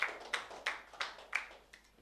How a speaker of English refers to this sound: All right, just clap your hands to Jesus and be seated.